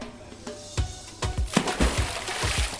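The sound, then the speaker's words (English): A gentle stream of water splish-splashes down concrete pool steps at a pool bar, with irregular little splats and soft thuds over a steady wet hiss, and no voices. “But when the barman noticed the gentle stream splish-splashing down the concrete stairs, he appeared strangely annoyed”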